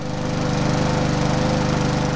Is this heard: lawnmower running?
yes